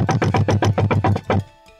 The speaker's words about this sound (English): After they had settled in, a panic knock came at the door.